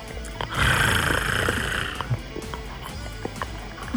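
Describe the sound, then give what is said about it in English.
A person imitates a cat's purr with a rough, rumbling, breathy rattle lasting about a second and a half, then trailing off into quieter low noises and faint clicks. “I can purr. I can sound like a human trying to purr.”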